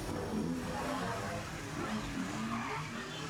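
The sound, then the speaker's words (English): Several motorcycle engines rev and roar continuously, their pitch rising and falling over a dense, gritty wash of noise, fairly loud, with no talking. “Are those Quantrons on Piranatron motorcycles?”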